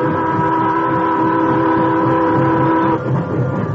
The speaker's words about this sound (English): When the time came, he went aboard with the others, and the train started.